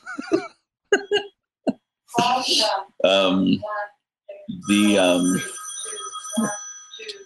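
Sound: landline telephone ringing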